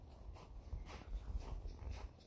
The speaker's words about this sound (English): This is the sound. My dog in his boots, walking on, like, I wouldn't say snowy sidewalk, but like there is some snow on the sidewalk.